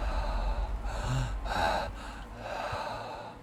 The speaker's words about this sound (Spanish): Me acurruqué en mi cama y me dispuse a dormir. En eso siento sobre mi nuca una respiración dificultosa.